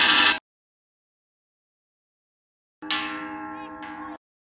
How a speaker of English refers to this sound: And they both found these giant sticks and were just banging on this metal pole.